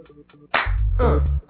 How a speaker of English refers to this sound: All right, come on, y'all. Clap it up.